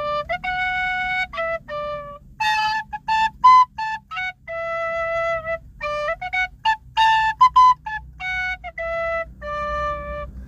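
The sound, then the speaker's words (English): A tin whistle, or penny whistle, plays a lively melody of short, separate notes with quick ornamented runs, fairly loud, over a low steady rumble in the background. “Learn how to play the tin whistle, the penny whistle, and do it to music while I, you know, while I'm stopped.”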